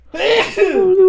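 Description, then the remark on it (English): A single loud sneeze with a strongly voiced, drawn-out quality, a brief sharp burst followed by a sustained vocal tail, with no talking around it. “Bless you. Gosh, dude, my allergies are killing me.”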